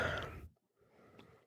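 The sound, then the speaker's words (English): A short, airy slurping second sip of whiskey, followed by a near-silent pause and a faint swallow or small click. Quiet, with no talking. “Second sip.”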